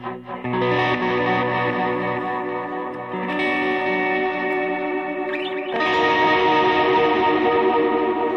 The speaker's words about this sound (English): Is the volume of the guitar okay? Is it too loud?